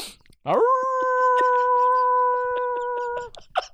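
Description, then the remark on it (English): A single drawn-out wolf howl imitated by a voice after someone farts: it swoops up quickly, then holds a steady, loud, clear tone for about three seconds before breaking off, with faint clicks and rustles behind. “Whenever anyone farts on the show anymore, you have to follow it with a wolf.”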